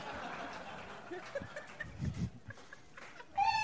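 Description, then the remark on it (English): A single sharp sneeze bursts out near the end, a sudden loud, voiced and slightly squeaky snap after a few seconds of soft, scattered rustling and low murmuring noise. “Bless you.”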